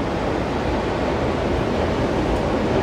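ocean waves

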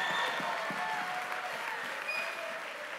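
audience hand clapping

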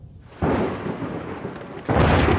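thunder

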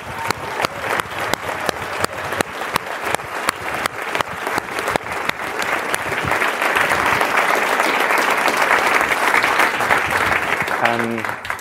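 audience applause

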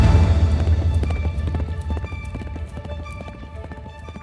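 horse hooves clip-clopping

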